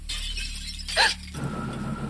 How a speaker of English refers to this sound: I'm halfway to the bathroom when the sound of glass breaking downstairs freezes me in place.